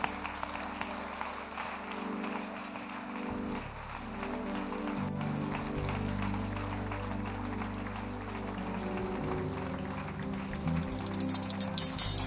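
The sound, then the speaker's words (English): An audience at the church God's Favorite House claps steadily and continuously to welcome a pastor, a dense rattling wash of applause that holds its level throughout, layered over sustained low musical tones. “Let's keep clapping, let's keep clapping, let's keep clapping.”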